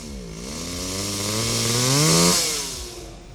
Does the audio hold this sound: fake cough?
no